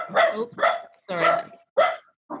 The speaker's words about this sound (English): That's a supportive dog.